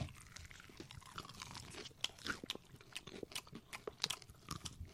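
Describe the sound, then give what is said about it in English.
Crunchy fried chicken being bitten and chewed, a rapid, irregular run of crisp crackling crunches with no talking over them. “grab yourself a piece of chicken.”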